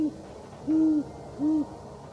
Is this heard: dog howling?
no